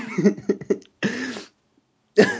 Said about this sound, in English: Start coughing?